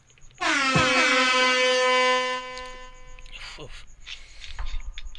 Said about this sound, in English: So if you guys want to go ahead and do one with us when you hear the air horns, let's rip it.